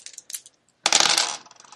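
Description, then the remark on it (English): A few faint clicks, then a dense burst of bright clattering as dice tumble and rattle across a hard surface for about half a second before settling, landing on a 10. “Roll 36 for me, if you would.”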